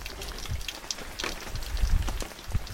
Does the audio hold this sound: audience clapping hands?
no